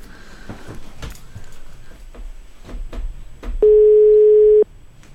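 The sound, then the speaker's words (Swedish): A single one-second burst of a steady telephone ringing tone on an unanswered call placed from a hidden number, loud, preceded by a few faint handling clicks and light background noise. “Så folk är ju rädda kanske att svara på dolt nummer som vi ringer ifrån.”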